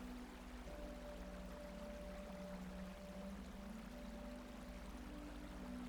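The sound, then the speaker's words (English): Cold, clear stream water in a meadow pours steadily into a water bottle as someone kneels beside the stream, a continuous soft rush with a faint hollow gurgle running underneath. It stays fairly quiet and even throughout, with no voices. “You kneel next to the stream, filling your water bottle with cold, clear water.”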